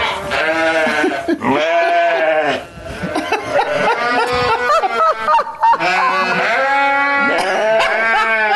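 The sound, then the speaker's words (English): Several sheep bleat loudly, their wavering calls overlapping one after another almost without pause, a busy chorus in a sheep barn in Virginia with no talking. “This is our sheep barn.”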